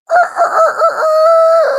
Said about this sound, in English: That's a Chanticleer, a proud rooster, ready to announce himself to the world.